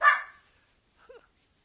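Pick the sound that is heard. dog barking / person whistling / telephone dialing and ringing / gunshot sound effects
dog barking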